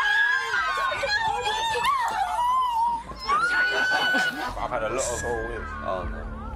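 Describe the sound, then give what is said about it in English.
Several women scream and shriek together at a surprise car waiting to take them to the Casa Amor villa, a loud, continuous, overlapping burst of high-pitched voices lasting several seconds with excited yelling mixed in. “Why are they screaming?”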